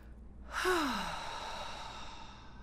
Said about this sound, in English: And when we're all consciously gathered up, we're going to slowly breathe in through our nose and hold. And then out through your mouth.